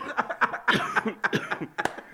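coughing

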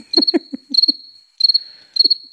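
crickets chirping sound effect

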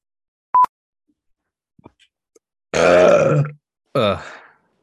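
burp

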